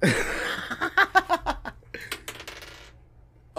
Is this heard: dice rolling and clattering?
yes